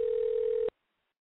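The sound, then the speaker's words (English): A single steady electronic phone ringing tone sounds clearly for under a second, then cuts off abruptly into silence, like an outgoing call waiting unanswered. “What is he up to that he's not answering the phone?”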